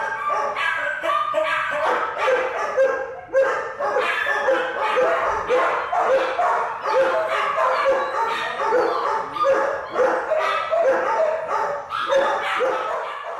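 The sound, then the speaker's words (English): A loud, dense chorus of many dogs barking, yipping and howling at once, colliding with crooning music played through the halls, overlapping without pause for the whole stretch, with high, wavering cries layered over rapid barks; from Matthews' secretly made DAT recording. “Howls and croons were countermeasures firing on each other in a stalemate.”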